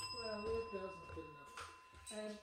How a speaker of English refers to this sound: Where's my bell? Hang on a second. Hang on, mine's here.